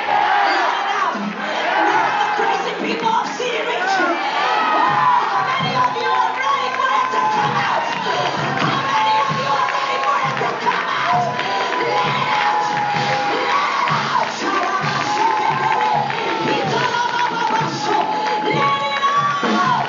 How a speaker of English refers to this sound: I need some crazy people to start shouting, let it out.